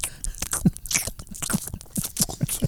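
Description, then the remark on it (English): One person chewing peanut butter, a steady run of sticky, smacking mouth sounds with soft crunchy clicks, repeating roughly twice a second with no talking. “Just one man or woman chewing peanut butter for 22 minutes.”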